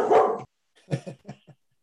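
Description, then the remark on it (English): A dog lets out one loud, drawn-out bark, goes quiet for a moment, then gives a quick run of three or four shorter, softer barks. No one is talking. “and his dog is joining in.”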